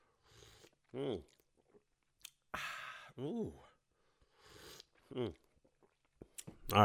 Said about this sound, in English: All right, let me get a drink of my, you already know how I do. I need to get a sip of that shit. Hold on.